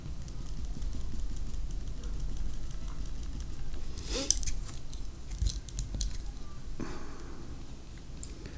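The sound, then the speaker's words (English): Light rummaging through small hard objects to pick up a mechanical pencil, with a few scattered clicks and clinks over several seconds against a low steady background hum. “Let's get the pencil.”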